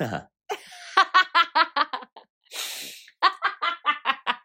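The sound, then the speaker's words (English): A big, exaggerated sniff, a long breathy rush of air drawn in through the nose, sits between two bouts of rapid, rhythmic, voiced laughter. “Go on, give us a sniff.”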